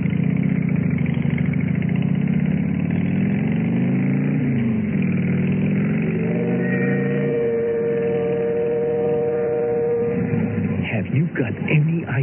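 A motorcycle engine runs with a continuous low rumble. Its pitch sweeps upward midway, holds as a steady humming drone for several seconds, then breaks into rougher, uneven revving at the end.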